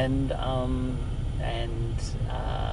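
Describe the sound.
A car engine idles with the air conditioning blowing on a warm day, a steady low rumble and whoosh running continuously beneath someone talking.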